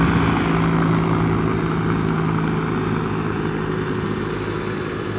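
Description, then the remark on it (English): A helicopter drones loudly and steadily overhead, its engine hum and rotor noise filling the whole stretch and easing off only slightly toward the end, with no voices. “Helicopter of some sorts from the hospital, I think, probably.”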